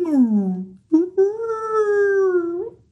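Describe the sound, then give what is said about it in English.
A person vocally imitates a high whale call: a wailing tone slides downward, breaks off briefly, then returns as a long, steady, hollow moan that fades out, with nothing else heard. “But like whales don't make low pitched noises. They do, but they also go like...”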